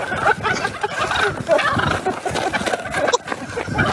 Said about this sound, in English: These toms having none of it, gobbling their displeasure at anyone bold enough to approach. Well, it reminds you that nature is all around us, and maybe we're not top of the food chain everywhere, because these guys are intimidating.